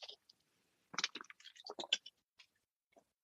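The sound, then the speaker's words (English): A quiet sip of water: soft wet mouth clicks and slurping bursts cluster in the middle, followed by a small swallow and a faint lip smack, with no talking. “So the third thing, oh, I got to take a water.”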